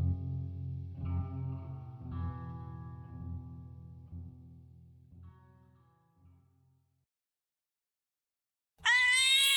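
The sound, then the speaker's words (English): A single loud black cat meow bursts in at the very end, after a stretch of eerie, heavily processed droning tones fades into a brief silence. “A black cat brings us a story that is purely based on my recollection.”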